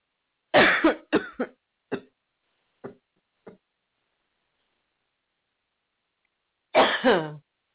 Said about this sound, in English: Sorry, people, for coughing in your ear.